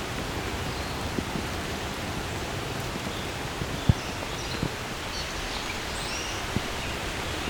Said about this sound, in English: And here comes the rain again.